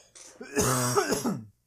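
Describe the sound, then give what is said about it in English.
A single raspy cough that rolls into a throaty, voiced clearing, lasting about a second, loud and alone with no talking around it. “It wasn't the cough.”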